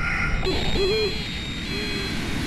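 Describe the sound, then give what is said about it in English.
An owl-like hooting call blares from a bird-deterrent loudspeaker in a grassy area between tarmacs, set off automatically to make birds fly away, two or three wavering hoots over a steady outdoor rumble, moderately loud. “The wailers are loudspeakers lined up and down the grassy areas in between the tarmacs.”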